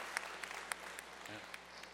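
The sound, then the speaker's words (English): A church audience applauding, a dense, steady wash of many hands clapping with a few sharper individual claps cracking through at irregular moments, holding an even level throughout. “I'd like for you all just to give a big round of applause for all they.”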